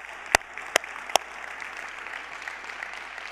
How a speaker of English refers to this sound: We applaud that. And would you help me thank our Black brothers and sisters at Horizon West Church for being part?